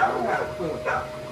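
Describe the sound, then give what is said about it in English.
A dog barks twice in quick succession, fairly loud, over a steady background hum. “Girl, get this dog before I have to kill this other dog.”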